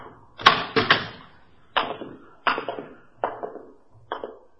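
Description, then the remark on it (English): A hospital room door being opened amid a series of heavy thuds and rattles, about six loud impacts at uneven intervals, each ringing briefly before fading, with no voices. “You want to open the door?”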